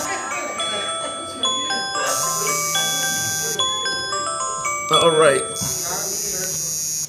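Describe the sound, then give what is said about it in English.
A man's cell phone alarm goes off with a repeating electronic melody of bright tones and a buzzing, vibrating edge while he speaks over it. “That's my alarm.”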